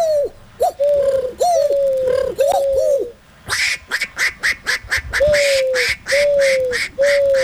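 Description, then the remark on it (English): A man imitates a dove's cooing with a series of low, hooting warbles repeated several times, joined midway by a rapid burst of fluttering, clicking pulses behind the coos. “I wonder if he can do a dove.”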